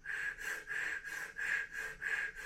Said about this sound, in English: But actually, if you do chest breathing, let's say you go out into the woods and you say, I'm going to breathe really shallow, and I'll try to do it in the phone so maybe you can hear it.